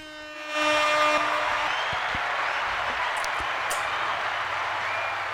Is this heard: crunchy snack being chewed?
no